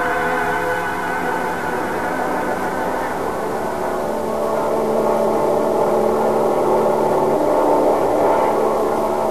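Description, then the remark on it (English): Airplane engines warm up in a steady, droning roar with a layered mechanical hum, holding at an even, moderately loud level for the whole stretch without any break or change. “We'll check the radar while they're warming up the plane.”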